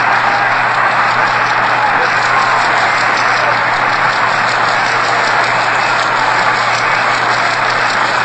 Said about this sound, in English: let our engineers allow you to hear the applause and the thunderous applause